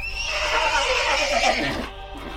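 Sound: horse neighing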